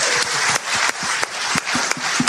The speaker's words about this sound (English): Round of applause.